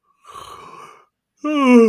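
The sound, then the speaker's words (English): A man performs a big yawn out loud: a breathy, gasping intake, a short pause, then a loud, drawn-out voiced exhale, with no other sounds. “And then he yawns a huge yawn.”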